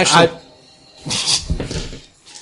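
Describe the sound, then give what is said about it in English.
A person imitates a howl with their voice: a short sharp burst, then a longer wavering, strained cry, fairly loud. “Like, another howl happens deep within the school.”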